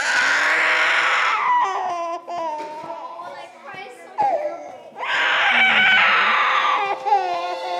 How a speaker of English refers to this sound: And so she's teaching this art class with her baby strapped directly to her chest. While these little kids are running around asking her questions, her daughter is literally screaming right in her face.